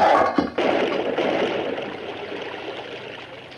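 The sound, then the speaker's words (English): Water rushes and pours steadily into a well, a loud continuous gushing with a brief break near the start, then a sustained flow that eases slightly as it goes on. “Turn the water into the well, Mr.”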